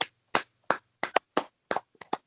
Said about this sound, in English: Well, I think this guy deserves a round of applause. I do. You mean a full cut into the ball round of applause? Yeah, I reckon so.